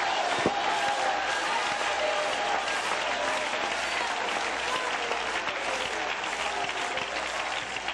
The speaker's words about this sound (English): Before you're seated, would you clap your hands to him and lift him up? Lift up your voice. Shout hallelujah.